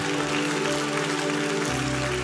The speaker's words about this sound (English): Why don't we give a round of applause to